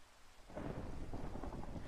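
After a brief hush, a deep rumble of thunder swells in and rolls on steadily, layered over a dense wash of falling rain, loud, with no voices present.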